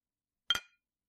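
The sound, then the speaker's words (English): Two glasses clink together in a toast, a quick double tap, a bright ringing chime that fades within a fraction of a second, heard alone against silence. “Let's have a toast, and perhaps she might hear the clinking of the glass from all the way up there.”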